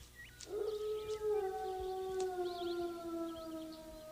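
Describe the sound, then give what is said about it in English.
Several wolves howl together in long, overlapping, slowly wavering tones that hold steady for the whole stretch, fairly loud, with faint higher chirps scattered above them. “Night does fall, though, mm-hmm. and the wolves return.”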